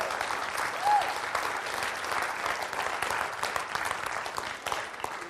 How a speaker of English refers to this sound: Oh, come on. If you're going to clap, you can clap a whole lot better than that.